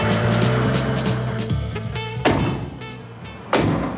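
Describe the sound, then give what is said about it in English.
A car engine roars loudly and steadily, its pitch shifting as the car turns into an alley and is intercepted and boxed in by another car, then two sharp heavy thuds cut in like vehicles bumping or doors slamming. “The car turns into an alley, and you are able to intercept it and box it in.”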